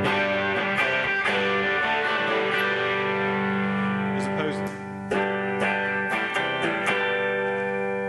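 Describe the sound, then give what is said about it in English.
Loud, gritty distorted electric guitar chords played through a distortion pedal and amp on stage ring out and sustain, with a run of sharp strummed hits in the second half; a voice briefly speaks over the playing. “I mean, if you have no pedals whatsoever and you just have a clean amp, and you want to get a distortion sound, then you need to buy a distortion pedal.”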